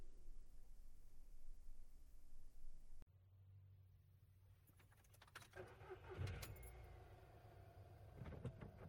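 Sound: car driving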